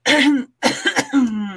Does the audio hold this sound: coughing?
yes